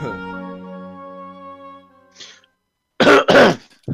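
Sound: cough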